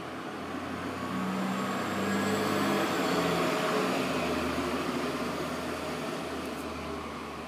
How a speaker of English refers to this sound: Apparently I am painting with a cacophony of trash trucks this morning, which is cool. Lord knows the more the trash trucks come, the better off our area is in its manner of odor.